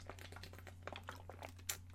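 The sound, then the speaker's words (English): Someone takes a quiet sip of water, said to come straight from the aqueduct in New York: a string of soft slurps, clicks and faint crinkles over a steady low hum, with no talking. “So I'm going to take a little sip of water, because, like, I got a problem.”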